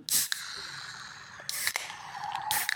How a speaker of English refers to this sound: So all of the pressurized beer that's inside the ball shoots out into the liquid in the can, and that's what creates the cool bubbles.